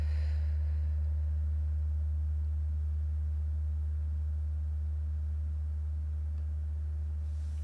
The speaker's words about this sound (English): I love that gong so much.